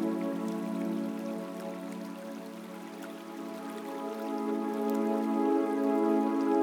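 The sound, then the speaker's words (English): Raindrops patter steadily onto a lake's surface, a soft continuous wash of light drops with a gentle sustained tone humming beneath, no voices present. “You hear the raindrops falling on the lake.”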